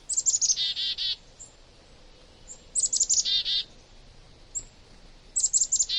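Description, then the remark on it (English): Songbirds calling in a winter flock: a bright, high phrase of quick descending notes ending in a buzzy trill, repeated three times at even intervals, clear with no talking. “Many winter flocks include members of different species banding together to brave the cold.”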